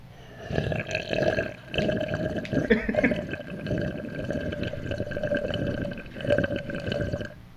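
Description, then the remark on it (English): A wet, gurgling noise from a person's mouth full of liquid swishes and bubbles continuously for several seconds. It is fairly loud and sounds much like a toilet flushing. “It definitely sounds like a toilet flush. I was thinking. That was a lot of liquid in my mouth.”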